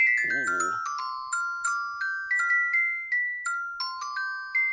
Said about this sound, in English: That was actually the ringtone for Dom's phone back in 1997. Yeah. he'd be playing Snake, and then he'd hear that all the time. Yeah, it was on his Nextel. I got to put my Snake game away so I could do this. Right. On his Nokia.